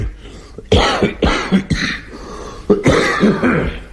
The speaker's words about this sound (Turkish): Nefes alın. Şimdi tutun nefesinizi. Öksürün.